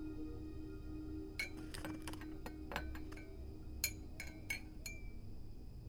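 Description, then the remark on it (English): Bright ceramic clinks ring out in small irregular clusters as a cup is tapped and set down while tea is made in a kitchen, tea leaves measured into the cup and just-boiled water poured in, over a steady low hum with no talking. “As I measure out the tea leaves into my favorite cup, I pour in the just boiled water and fill it up.”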